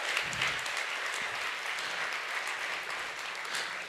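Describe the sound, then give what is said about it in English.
A crowd claps steadily in a sustained round of applause, dense and even throughout with no pauses, a bright crackling wash of many hands at once. “Hey, honestly, I just wanted you all to see them so you guys could give them a round of applause real quick.”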